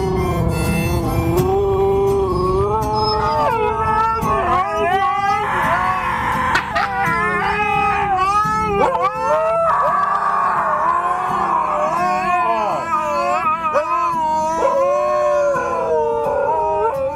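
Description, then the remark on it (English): Several huskies howl and yodel together in continuous, wavering, overlapping tones that rise and fall, with yips and whines woven through the loud, unbroken chorus. “I know they can talk, and they love to sing, but these Huskies”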